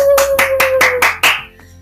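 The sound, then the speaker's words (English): A single person claps six times in a quick, even rhythm, each clap sharp and bright, before the clapping stops and the sound falls to near quiet. “Sorry, I have a little lone applause there.”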